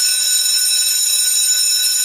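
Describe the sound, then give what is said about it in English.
A wrestling ring bell rings loudly and continuously for about two seconds, a bright, shrill metallic clangor that stays steady throughout with no one talking over it. “Yeah, listen for the bell, folks.”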